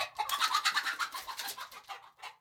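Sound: chickens clucking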